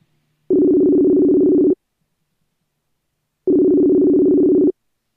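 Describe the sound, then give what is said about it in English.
A phone's ringback tone buzzes twice during an outgoing phone call, each steady electronic burst lasting about a second with a longer silent pause between, clear with no voices. “It's ringing.”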